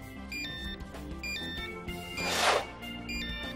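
A mobile phone rings with a bright electronic melody of stepped, beeping notes, steady, briefly overlapped by a short whooshing burst of noise partway through. The phone belongs to a young man and has 23 new messages.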